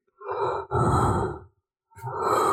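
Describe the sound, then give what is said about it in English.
A voice imitates the heavy breathing of actor Kareem Jamal in a film: two long, loud, rasping exhales in quick succession, a brief pause, then a third breath starts, with no talking. “Yes, he was breathing throughout the film, and he would, especially when he had to walk.”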